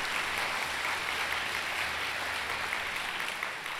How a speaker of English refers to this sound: The largest, yes. Give yourself some applause.